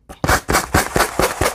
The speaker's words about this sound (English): I like the sanding block because it's just a little faster. Okay, so let's sand.